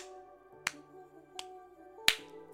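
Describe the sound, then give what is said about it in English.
Three sharp hand claps, spaced slowly and slightly unevenly, the last one loudest, sounding over a steady background of sustained, humming musical tones. “That's me clapping for you.”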